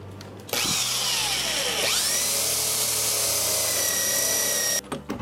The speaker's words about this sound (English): All right, I'm gonna do a 1 inch hole in the door jamb where the deadbolt lines right up to here.